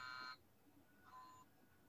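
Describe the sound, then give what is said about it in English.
An alarm clock buzzes at 7:30 in two short electronic bursts, the first louder and the second fainter, sounding muffled as if from another room, with no talking. “It might be my husband's alarm clock, maybe.”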